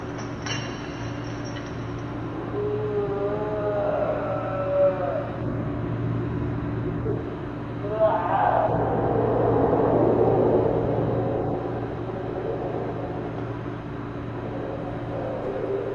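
A low, steady droning rumble runs throughout, with moaning, growl-like tones rising out of it early on and a louder, rougher surge of noise in the middle before settling back to the hum.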